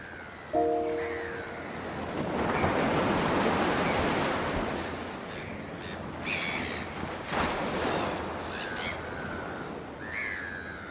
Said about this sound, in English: Is it shallow with little waves? Or is it deep with big waves? Some days the ocean looks calm and quiet. Other days it's full of energy, just like us.